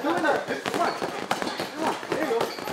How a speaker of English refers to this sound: As you walk into Rudy Moreno's backyard in Vista, you hear the sound of gloves striking punching bags.